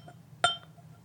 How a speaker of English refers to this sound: Yeah, I think we should start with the Glenglassa out at sea. It's Glenglassa is obviously on Sandown Bay in the northeast of Scotland, right on the coast. And I'll just pour a dram for us both, and then I can introduce you to it.